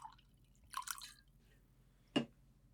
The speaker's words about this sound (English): Well, hold on a second. Let me get my bottle. Pour in my normal glass that's not so fancy.